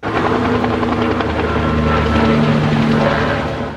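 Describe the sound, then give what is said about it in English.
A BC Wildfire Service helicopter drones steadily overhead while dousing a small wildfire in Heritage Park in Mission, near the Fraser River; its loud rotor thrum and engine whine fill the whole stretch with a continuous, even roar and no voices. “A BC Wildfire Service helicopter dousing the blaze in Heritage Park near the Fraser River.”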